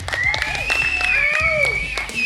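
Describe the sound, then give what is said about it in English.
A crowd at the Carillion Trap Cantina number 3 (PUCT 3) claps and cheers steadily, dense overlapping handclaps mixed with high whoops and a whistle-like tone, loud, with no talking over it. “Why didn't anybody clap?”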